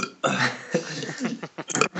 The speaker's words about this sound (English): sorry, I need to burp.